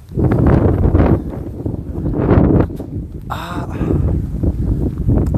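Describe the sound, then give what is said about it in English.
Strong wind buffets the microphone outdoors at night while a person walks home, a loud, constant low roar rising and falling in gusts, with a brief brighter whoosh near the middle. “Oh, by the way, it's windy as fuck and I'm walking home from meeting up with my pals.”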